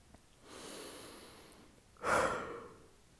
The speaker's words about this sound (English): My God, I'm yawning so much.